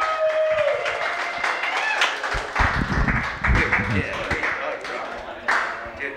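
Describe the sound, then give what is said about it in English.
An audience claps steadily for about six seconds to welcome a guest onto the show, a dense wash of overlapping hand claps with crowd voices and cheering mixed in, swelling slightly in the middle. “Let's clap it up this for this guy.”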